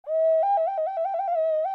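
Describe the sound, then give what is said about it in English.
A rain whistle blown steadily for under two seconds: a clear, fairly loud tone that warbles rapidly between two nearby pitches, with no voices. “That's the rain whistle.”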